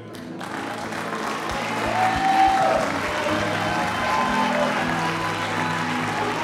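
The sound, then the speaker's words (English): A crowd claps and cheers steadily in rejoicing for several seconds, a dense wash of applause with scattered whoops and shouts rising in the middle, with no single voice standing out. “I know there's a level of rejoicing greater than that after what you just heard.”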